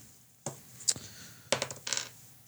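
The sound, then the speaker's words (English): Dice rolled across a hard surface for a constitution saving throw, landing on 6: a couple of sharp clicks, then a quick burst of clattering tumbles that settles and fades, with no talking. “All right, roll a constitution thirsty. Saving throw.”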